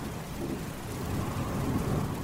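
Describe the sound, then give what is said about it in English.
A steady wash of heavy rain with low, rolling thunder rumbling underneath, continuous, with no voices present; a dark, stormy night on the shores of Lake Geneva in June 1816. “It was, and this is true, a dark and stormy night.”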